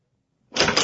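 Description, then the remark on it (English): After a moment of silence, a burst of quick, clattering running footsteps aboard a steamship suddenly starts up, loud and hurried, with a dense rattling quality across the last half second. “Someone's running.”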